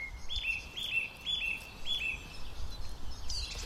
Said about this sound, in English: And at that point, there was nothing else calling. It was just this thrush. And then it carried on all summer. And whenever I wanted to, I could hear the song of that thrush.